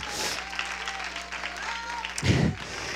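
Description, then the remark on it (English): An audience claps its hands in praise to the Lord during worship, a dense, steady wash of applause, with crowd voices mixed in and a low rumble swelling briefly near the end. “Give the Lord a hand clap praise.”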